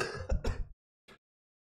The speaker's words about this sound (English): Okay. Sorry, I don't mean to cough while we're on the show.